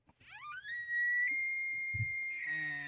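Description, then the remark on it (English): A single long elk bugle: a high, whistling tone rises steeply, holds a piercing sustained note, then slides slightly, with faint low grunting underneath near the end. “That's an elk.”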